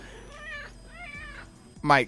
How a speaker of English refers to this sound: I don't know if it's picking up my cat meowing. He is demanding that I pet him and talk at the same time.